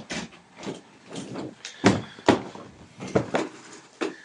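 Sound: door opening and closing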